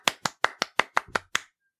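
rhythmic hand clapping

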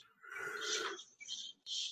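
big yawn

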